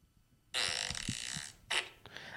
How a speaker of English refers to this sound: Well, this one's just classic fart.